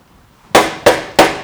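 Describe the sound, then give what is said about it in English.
Three sharp, evenly spaced knocks on a door, loud and crisp, each ringing briefly before the next, after a moment of near silence. No voices. “If you hear the knock, open the door, let him in.”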